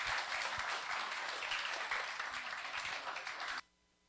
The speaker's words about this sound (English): Let's all give a round of applause for Pastor Scott Harris.